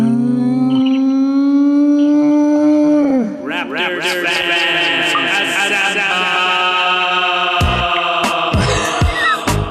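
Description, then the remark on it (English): A short, loud Raptors sports sting jingle opens with a long, steady howling tone, then breaks into a dense swirl of wailing, sliding pitches and sharp hits, with no talking over it. “would you give me that Raptors sting?”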